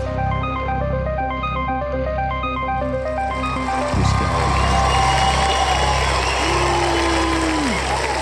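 crowd cheering

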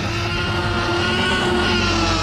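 T-Rex roar sound effect

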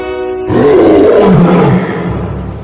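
lion roar sound effect

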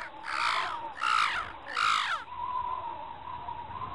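crows cawing

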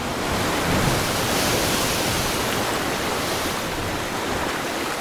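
sea waves splashing

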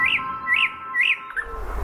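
nightingale singing

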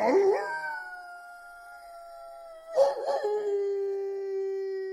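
howl

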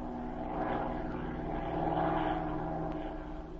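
propeller airplane flying overhead

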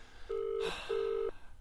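telephone being dialed

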